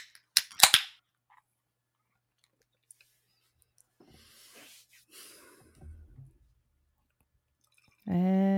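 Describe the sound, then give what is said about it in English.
A sharp snap of a can tab cracking open on a can of Odd by Nature's 16 Ounces of Freedom, a 6.3% double dry hopped IPA from Cape Nettic, Maine, then a few seconds of quiet fizzing and the beer pouring, with a voice starting up at the very end. “Shall we in 3, 2, 1, crack?”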